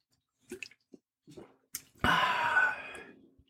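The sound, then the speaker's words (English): Wet mouth sounds and small clicks as someone gulps an icy cold beverage, followed by a louder breathy, fizzy rush of sound lasting about a second before fading into quiet. “Time for a gulp of my icy cold beverage.”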